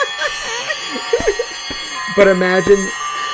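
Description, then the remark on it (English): Several landline telephones with different ringtones ring at once in an apartment when someone calls, one starting earlier than the others, their bright metallic bells overlapping in a loud, busy jangle, with voices talking over the clamor. “because they all had different ringtones. Yes, and one rang earlier than the other, so it was like bling bling bling bling bling bling.”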